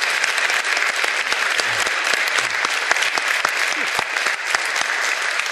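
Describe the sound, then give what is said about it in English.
An audience claps steadily for several seconds, a dense, sustained wash of many hands with sharp individual claps popping out, holding an even loudness throughout. “So just, yeah, give these folks a round of applause.”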